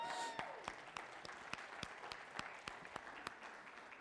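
An audience applauds, with a dense wash of clapping punctuated by sharp, evenly spaced claps that fall into a steady rhythm, holding at a moderate level throughout.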